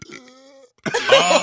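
A short, low, droning burp made on command fades out, then after a brief pause comes a louder, rough, breathy outburst like a cough or strained exhale.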